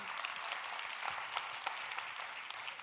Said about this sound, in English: Yeah. We're going to clap.